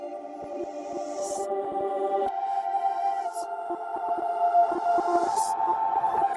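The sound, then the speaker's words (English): A washy, sustained wall of reversed reverb, made by printing a reverb send of a vocal and a piano together, then reversing and condensing it. It swells steadily with smeared piano-like harmonics and airy vocal shimmer in a backward-feeling texture. No one speaks. “I think what that is, it's a reverb send of a vocal and a piano together and printing the reverb, so bipping the reverb, and then reversing it and condensing it.”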